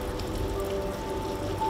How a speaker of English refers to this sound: walks along a narrow pavement in the pouring rain.